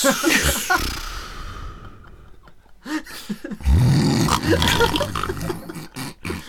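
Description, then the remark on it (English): Someone imitates their own snoring with their voice: a breathy, hissing inhale followed by a loud, rattling snort and grunt, then a few softer breathy snuffles trailing off. “What do you think your snoring's going to sound like?”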